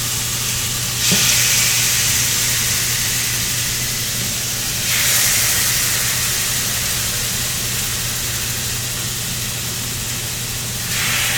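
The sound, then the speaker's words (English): Chicken thighs sizzle steadily in a frying pan, a loud continuous crackling hiss with brief surges as pieces are added around one, five and eleven seconds. No one speaks. “I'm just gonna put the chicken thighs in here.”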